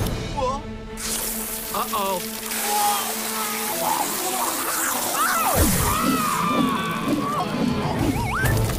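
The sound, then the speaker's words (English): A water sprinkler on the grass sprays in a steady, hissing rush that fills the whole clip, with squeaky voices and cartoonish sound effects bursting over it and a sudden swooping drop partway through. “on the grass, and then suddenly he gets a water sprinkler enema.”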